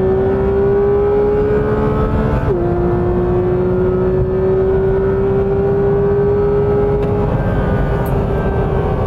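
A Porsche GT3 RS engine roars loudly under hard acceleration on a track, its pitch dropping briefly at a quick gear change early on, then climbing steadily again with no talking.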